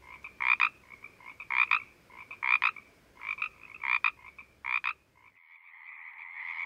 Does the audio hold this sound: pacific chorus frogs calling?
yes